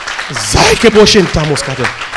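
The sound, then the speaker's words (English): An audience claps steadily as a clap offering to the Lord, a dense, crackling wash of applause, partly masked by a loud, emphatic male voice speaking or chanting over it for the whole two seconds. “Oh, give the Lord a clap offering here.”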